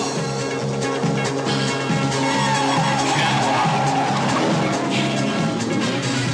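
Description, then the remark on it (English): A Lamborghini Countach sports car engine screams at high revs, loud throughout, its pitch climbing as it races along in a movie's cop chase scene, with hints of tires squealing over the steady roar. “The scream of the engine, the speed of the car rocketing across the screen.”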